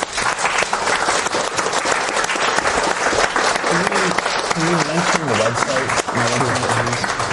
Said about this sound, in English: And what we're offering them is our friendship and our camaraderie. And a big round of applause.